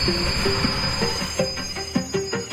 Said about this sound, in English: As the train arrived, the crowd surged forward. I was too close to the platform edge, lost my balance, and fell into the path of the oncoming train.